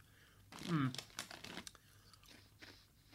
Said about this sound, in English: me eating disgusting crisps that I don't like